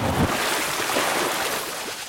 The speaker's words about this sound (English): And I would apply delay to it to make it sort of strange. And like, you're not just hearing a splash in a pool, you're hearing a sound object that is crazier than just a splash in a pool.